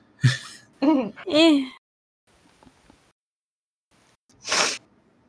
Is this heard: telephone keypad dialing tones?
no